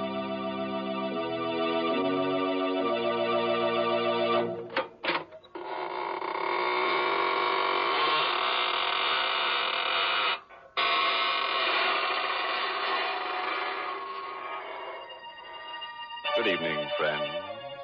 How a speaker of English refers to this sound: This is your host of the Inner Sanctum, inviting you in through the creaking door.